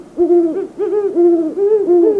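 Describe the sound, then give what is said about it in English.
A great horned owl hoots four times in a steady series, each hoot deep, resonant and loud, with no other sounds around it. “Hoots of the male great horned owl are lower in pitch than those of the female.”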